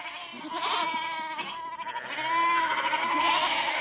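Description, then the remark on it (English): Several of Lani Malmberg's goats bleat over one another in a continuous, overlapping chorus, loud, with wavering nasal cries filling the whole stretch and no voices speaking. “Lani Malmberg and her goats.”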